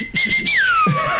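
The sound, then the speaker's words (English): A loud, piercing, practiced mouth whistle holds a steady high pitch, then glides smoothly downward, ringing out clearly over faint low background murmurs. “And then people say to me now, hey, you just did that with your mouth. And I go, yeah, because I practiced it.”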